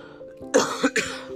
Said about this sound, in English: Sorry about the cough. I'm getting over a bit of a cold at the moment.